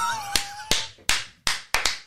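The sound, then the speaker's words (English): Six sharp hand claps in a loose, slightly uneven rhythm, the last two landing in quick succession, with a faint held tone in the background at the start. “One last thing before we clap.”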